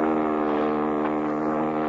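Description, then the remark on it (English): A speedboat motor runs steadily and loudly, a constant droning engine hum with a rich buzzing tone and no change in pitch for the whole stretch. “Speedboat. About a 30-footer.”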